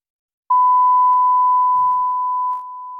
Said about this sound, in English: Very annoying to start a video with that beep.